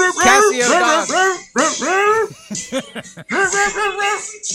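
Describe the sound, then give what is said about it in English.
A Casio keyboard's dog-bark sample played as a quick, bouncy run of pitched yaps, about a dozen in a row like a little melody, loud with no talking. “Casio Dog, go!”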